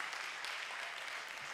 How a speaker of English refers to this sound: Come on, would you give the Lord a hand clap of praise in the house tonight?